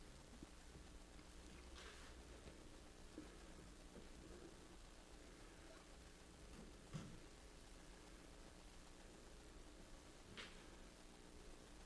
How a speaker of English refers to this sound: Lost connection there.